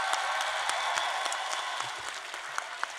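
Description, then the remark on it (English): An audience at a poetry event applauds every poet who performed on stage, steadily, a dense wash of many hands clapping with a few sharper individual claps standing out, holding an even level before easing slightly toward the end. “Before I announce these five folks, a round of applause for every poet that graced this stage tonight.”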